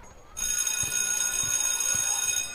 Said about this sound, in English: the recess bell rang and everyone rushes to get in line.